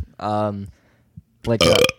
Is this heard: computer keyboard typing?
no